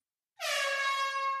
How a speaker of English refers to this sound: Wow. Beautiful. Beautiful air horn there. I like the reverb on that. It's like in a hallway thank or something.